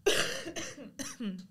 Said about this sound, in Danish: Jeg skal lige hoste, giv mig lige et øjeblik.